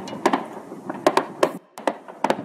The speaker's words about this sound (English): We hear multiple gunshots.